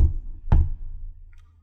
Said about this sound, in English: And after a few sort of dazed moments, you hear a set of hard knocks at the door.